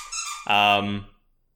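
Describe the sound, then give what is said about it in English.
A dog squeaks a squeaky toy twice: a thin, high squeal followed by a louder, longer honking squeak that fades out, with no talking. “He says, squeak, squeak, throw the ball.”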